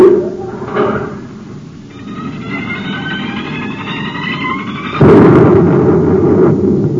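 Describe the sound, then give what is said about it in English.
A low, steady rumble builds under high whistling tones, then a sudden loud gun blast blows the top off a volcano crater, giving way to the heavy, roaring rumble of the volcano erupting. No voices. “You blasted the top off the crater. The volcano. It's erupting.”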